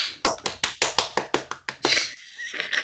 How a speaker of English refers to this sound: That was not mean to be a bad clap.